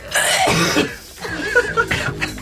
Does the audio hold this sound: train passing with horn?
no